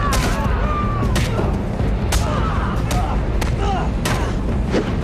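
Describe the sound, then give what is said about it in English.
High, strained screams and yells rise and fall amid a dense, noisy movie fight, punctuated every second or so by sharp, loud bangs and heavy impacts. “There's some really interesting screaming going on in this fight.”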